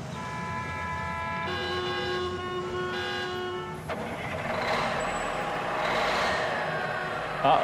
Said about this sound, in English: Wait, listen. I heard something. Sounds like a bus. There's a lot of traffic. A lot of traffic.